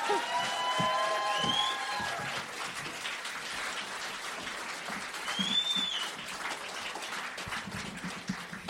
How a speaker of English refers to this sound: Women and gentlemen, please welcome us back for the second half of the show. Thanks. Start clapping.